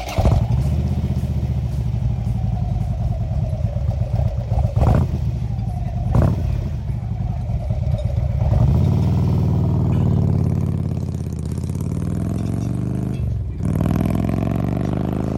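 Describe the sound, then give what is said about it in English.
A motorcycle engine idles with a low, steady rumble, then revs up several times in sharp bursts, pitch rising and falling as the throttle opens and closes, loud with no talking. “And that bike you just heard just now is from our latest contributor,”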